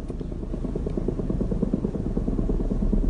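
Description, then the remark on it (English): Helicopters sent out by the federal government to survey minerals buzz steadily in the skies above Telluride, a continuous low, throbbing drone with a rapid rotor pulse that holds at an even loudness throughout. “That buzz was coming from helicopters sent out by the federal government to take a bird's-eye look at the minerals below Earth”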